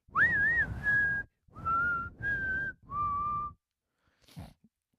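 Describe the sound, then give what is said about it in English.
A clear whistled melody, the theme of the western film The Good, the Bad and the Ugly: a wavering opening call, then three long held notes with short breaks, ending with a brief breathy noise. “They're going to whistle.”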